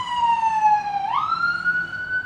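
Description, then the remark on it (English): An ambulance siren wails steadily, its tone dipping then sweeping upward into a higher, sustained pitch, loud, with a low rumble of traffic beneath and no voices. “Apparently, we have some kind of... I bet you... Medical service.”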